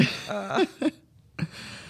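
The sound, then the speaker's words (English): A muffled, suppressed cough and throat clearing from a person trying not to cough after COVID: a strained voiced burst followed by two short, stifled coughs separated by a brief silence. “No, I'm trying to not cough.”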